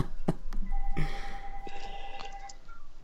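An engineer's landline house phone rings with a steady electronic tone, a few sustained pitched beeps layered over soft clicks and knocks, with no one talking.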